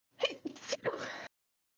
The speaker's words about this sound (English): Oh, I'm going to sneeze.